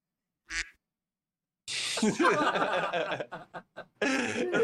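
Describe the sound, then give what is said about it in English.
A brief duck quack sound effect played from a soundboard, then a longer stretch of loud, raspy quacking mixed with people chuckling, ending in another harsh burst of quacks. “That soundboard is the best thing we discovered. Famous recording artist is named after a duck.”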